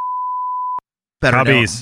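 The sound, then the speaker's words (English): A single steady, loud censor bleep, a pure high tone held for most of a second, covering the words "White Sox", stops abruptly; after a brief silence a person begins talking. “I want you to beep the White Sox.”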